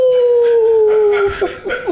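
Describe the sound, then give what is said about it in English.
A wolf lets out one long, drawn-out howl that holds steady and slowly sinks in pitch, followed by a few short, choppy bursts of sound near the end. “I feel like you can't mention a Halloween special without that wolf baying at the moon.”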